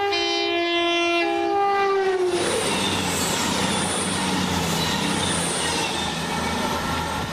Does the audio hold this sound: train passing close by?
yes